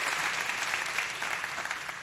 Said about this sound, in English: Can we say thank you for that? Yeah, we want to clap for that song again. I want to hear a better clap for that song.